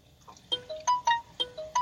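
A phone ringtone plays a short electronic melody of six bright, evenly spaced notes that step up and down in pitch, fairly loud over a faint background, with no voices.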